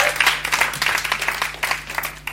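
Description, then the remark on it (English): An audience at a church men's event applauds, a dense, steady patter of many hands clapping together at a fairly even loudness throughout, with no voices standing out above it. “Come on, let's give her another round of applause.”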